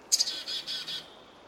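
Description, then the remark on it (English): A chickadee's chick-a-dee-dee-dee alarm call: two quick high notes, then about four buzzy, evenly spaced dee notes. Clear, with no talking. “It'll do a chick-a-dee-dee-dee call, and the number of D notes at the end will increase with increasing anxiety or the approach of a predator and so on.”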